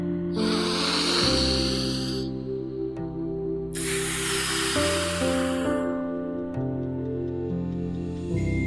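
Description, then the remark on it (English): Two long, slow, deep breaths, one in and one out, each a loud airy rush lasting a couple of seconds, with steady soft music playing underneath throughout. “Sometimes when I'm feeling impatient, I slow down and take a long, deep breath.”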